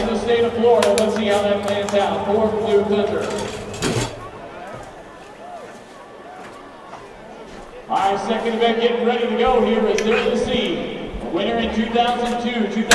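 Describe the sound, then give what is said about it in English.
A booth door thuds shut about four seconds in, abruptly muffling the loud crowd chatter outside; the noisy voices swell back in later, as if the door reopens. “Get the door to the booth. Here, I'll go get it.”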